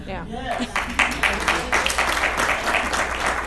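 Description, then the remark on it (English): A brief burst of voice gives way to an audience clapping, a loose patter of many hands at a steady, moderate level with irregular sharp claps running to the end. “Y'all don't know when to clap.”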